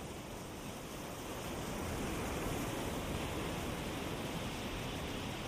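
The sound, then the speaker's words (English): A steady, hissing wash of ocean surf rolls on without pause, swelling gently partway through. It is soft and continuous, with no voices. “watching the waves come in”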